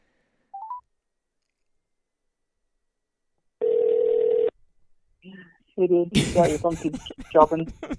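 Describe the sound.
A phone call being placed to call someone back during a conference call: a short dialing beep, a pause, then one steady ringback tone lasting about a second. A voice answers and people start talking loudly.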